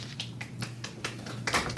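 A short burst of applause: a couple of seconds of sparse, irregular hand claps at moderate volume over a faint, steady low hum, with no voices.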